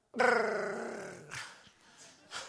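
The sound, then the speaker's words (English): A man's voice imitates the feeble roar of a lion at Columbia Riverbank Zoo: one drawn-out, throaty growl lasting about a second that sags and fades, followed by a couple of short breathy huffs. “The roar don't even sound like a roar. It's more like.”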